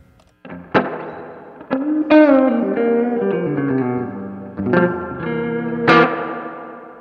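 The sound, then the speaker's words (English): Electric guitar played through the 60s spring reverb setting of a Flint reverb and tremolo unit: a few plucked notes and chords drenched in springy, wet reverb, each attack ringing out into a shimmering, echoing tail. It's fairly loud, with no voices. “The reverb's so killer. Like, you can go 60 spring, you know?”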